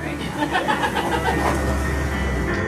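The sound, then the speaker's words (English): An Amazon delivery truck's engine rumbles low and steady, running continuously beneath people talking and laughing. “Come as you are with the truck and everything.”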